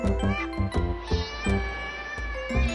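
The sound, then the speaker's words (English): A hungry cat meows over and over in quick, insistent bursts in the morning, loud, with a steady tonal hum running underneath and no voices. “But slowly opening my eyes, I finally realize the stupid cat is hungry.”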